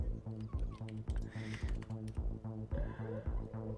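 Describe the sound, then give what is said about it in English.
Rapid, steady keystrokes clatter on a computer keyboard that had water dropped in it, a run of crisp clicks about four or five per second, layered over a sustained tonal hum in the background. “My keyboard's fucking up because I dropped some water in it before.”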